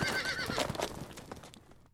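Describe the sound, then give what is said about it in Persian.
A horse neighs loudly, a bright, wavering whinny with a rising and falling pitch that fades out within two seconds, with no one speaking over it. “سوگند بسپان دونده ای که نفس نفس می زند و سوگند بسپانی که بامدادان هجوم می آورند و در آنجا غبار برانگیزند.”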